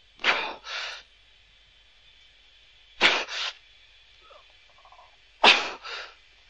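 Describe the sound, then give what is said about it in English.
A pilot's strained breathing under G-force in an aircraft, legs, bottom and abdomen tensed: three loud cycles about every two and a half seconds, each a sharp, forceful burst of breath followed by a quick gasping intake, over a steady high hum. “And here comes the weird breathing.”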